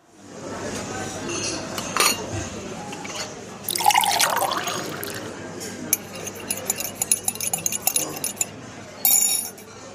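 Tea pours into a cup with a short, splashy trickle, surrounded by light clinks of china and a spoon tapping. The sounds are fairly quiet, with a faint hum underneath.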